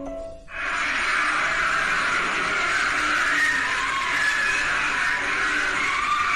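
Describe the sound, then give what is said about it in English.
A loud, unbroken wall of many overlapping screams and wails, swelling in after a brief dip at the start and holding steady for about six seconds with a harsh, shrill edge. “But when they lowered a microphone all the way down this hole, they caught this audio.”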